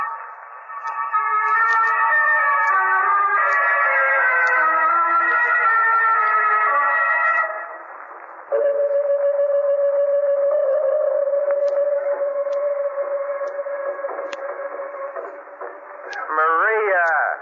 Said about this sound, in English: Stop playing that record.